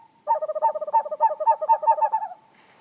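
A screech owl gives a rapid, quavering trill of closely spaced notes lasting about two seconds, clear, with no other sounds around it.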